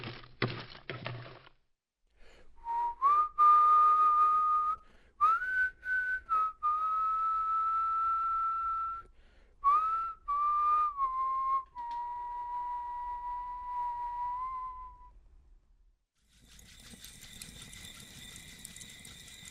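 A person whistles a slow, wavering melody of sustained notes with small pitch slides, loud, ending with a brief burst of brighter tonal noise.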